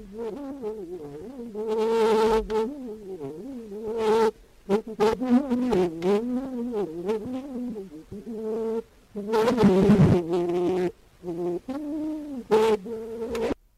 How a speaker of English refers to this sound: We're going to hear a couple of other things he's recorded, some brief sounds. This is a vocal solo. It's called Vole Petite Abielle.